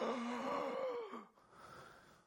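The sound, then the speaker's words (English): A voice imitates a newborn gasping for breath just after birth: a strained, wheezy inhaled gasp with a falling pitch, followed by a breathy, rasping exhale, fairly loud. “And then gasping for breath.”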